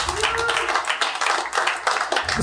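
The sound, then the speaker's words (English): Scattered applause from a small audience of about eight to ten people who have seen the Liam Neeson film The Grey, a modest burst of uneven hand claps that carries steadily for a couple of seconds at moderate loudness, with no one speaking over it. “Anybody by applause? Anybody has seen this movie?”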